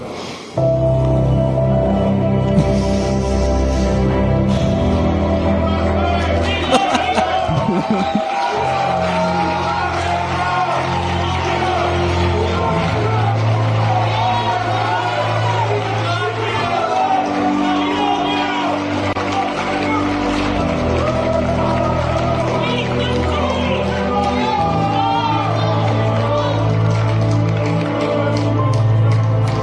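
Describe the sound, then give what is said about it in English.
A large rally crowd cheers, whoops and shouts without letup for half a minute, a loud, dense roar of many voices with steady low tones humming beneath it. “He's mugging, basically, for the crowd.”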